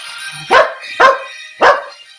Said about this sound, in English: Now that is a ringtone I may never want to hear again